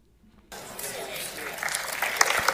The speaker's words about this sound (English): And you have the audience cheering it on.